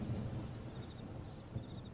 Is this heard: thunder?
yes